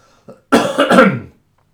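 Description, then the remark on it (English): A brief soft catch, then a cluster of two or three rough, raspy coughs in quick succession from a speaker who has moved away from the microphone, sounding a little distant and slightly muffled, with no talking. “hang on, I'm going to give a little cough. I'm going to come away from the microphone.”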